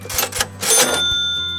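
A cash register sound effect: a few quick mechanical clacks and a rattling drawer slide, ending in a bright ringing bell tone that sustains. No one speaks.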